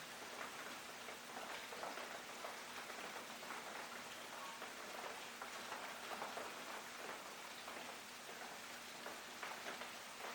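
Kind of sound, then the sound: nature, rain falling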